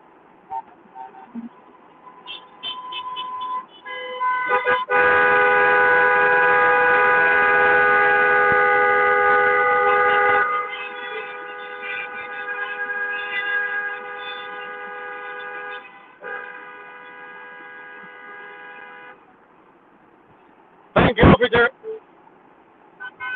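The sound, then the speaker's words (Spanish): Several car horns in a slow-moving car caravan honk together in long, overlapping blasts that swell loud, ease into a quieter drawn-out chorus, then fall silent before a final short, sharp burst of honking. “Miren cómo hay automóviles aquí.”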